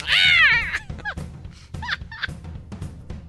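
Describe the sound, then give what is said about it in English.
A person imitates an owl call: a loud, raspy screech lasting under a second, followed by a few shorter, clipped squawks spaced apart. “Part of Owl played by Hedwig”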